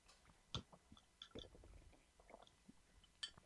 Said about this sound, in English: Sorry, I'm chewing.